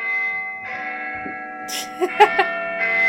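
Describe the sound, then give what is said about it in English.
A large church bell rings with a deep, sustained resonance, its humming tones hanging in the air while a few brighter strikes sound near the end. “Yeah, you'd need a bell the size of... Large Len?”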